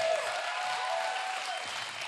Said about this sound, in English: Give them a big old clap.